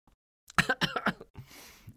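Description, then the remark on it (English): A quick run of three or four loud coughs, then a breathy, rasping exhale trailing off. No talking. “I cough when I lie.”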